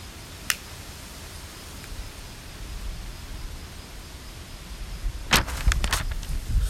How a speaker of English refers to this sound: And it's windy as shit, bro.